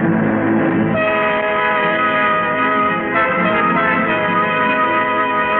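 train

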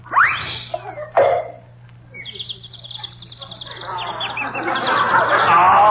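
birds chirping and singing

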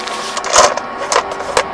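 dice being rolled

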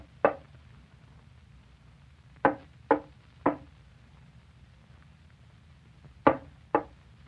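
knocking on a door

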